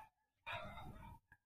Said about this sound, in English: So please ignore the dogs. It's fine. Just ignore that.